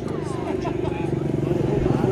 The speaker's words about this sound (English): Okay, and he's attempting to restart the go-ped.